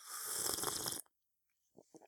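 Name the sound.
sipping coffee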